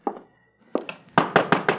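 knocking on a door

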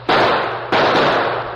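gunshots

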